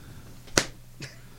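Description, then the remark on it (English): A hand smacks a thigh once, the way some wrestlers do on a headlock, with a sharp, loud slap, followed by two softer, duller knocks over a low steady hum. No one speaks. “I'm going to smack my thigh on a headlock.”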